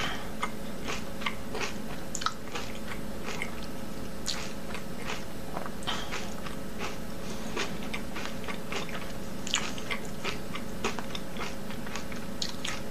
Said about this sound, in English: crunchy, sloshy noises. So I guess cereal goes hand in hand with that. Yes, they do. Oh man, the microphone is keyed up real high there. Yeah, I had to lower it so much. Sorry, I should have warned you. Well, it's crunchy, I'll give it that.